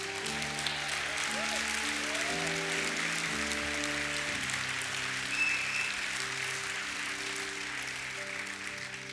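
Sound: audience applauding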